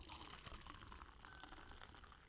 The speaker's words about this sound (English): Ooh, go ahead and pour yourself a drink. Oh, let's get right into it. All right. This makes you feel like every single time you hear the pour into the cup, it just